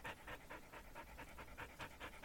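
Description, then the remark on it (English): A puppy named Frankie pants rapidly and steadily, with quick rhythmic breaths repeating about every quarter second, moderately quiet, with no talking. “And by the way, if you hear our mascot Frankie's panting, I'm sorry.”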